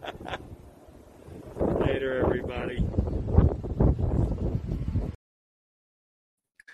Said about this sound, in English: As you can tell, it's windy out there today. It's blowing pretty good at all the outdoor decks.